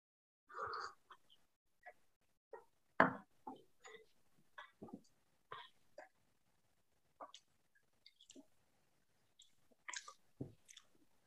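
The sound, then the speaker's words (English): Quiet mouth sounds of someone sipping and tasting a mild gin made in the Montafon, Austria, from a glass: a slurp, then a scattered series of wet lip smacks and tongue clicks with short pauses between, no talking. “Very mild in the nose, and let's have a sip.”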